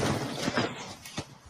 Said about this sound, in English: Grab your bucket. Pop a squat, take your dump, open your shin shack, remove bag from thunder bucket, slap that bitch shut, then just close up your shin shack.